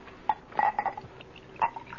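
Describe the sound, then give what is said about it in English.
Wine glugs into a glass in a few short, uneven gurgling bursts with a hollow, mid-pitched tone. The pour is soft and no one speaks. “Let me fill your glass.”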